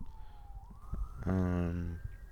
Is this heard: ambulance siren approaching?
yes